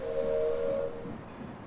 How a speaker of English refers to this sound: She waves goodbye to the people on the platform as the wheels of the train begin slowly moving on the train tracks.